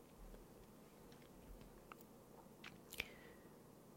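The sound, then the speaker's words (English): A female dog gnaws on her squeaky toy: a few soft, scattered chewing crunches followed by one short, high squeak near the end, quiet, with no one talking. “Shiva has possessed my dog right now to start chewing on her squeaky toy, basically.”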